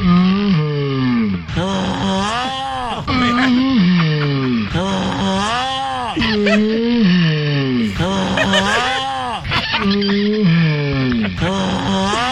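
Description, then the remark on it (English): Big turtle mating noises edited together with the voice of a man from the TV show Live PD: loud, deep, drawn-out groans and moans swelling and dipping in pitch, repeating roughly every couple of seconds without pause. “These are Big Turtle mating noises mixed in with the guy who threatened to fart on police officers on the TV show Live PD.”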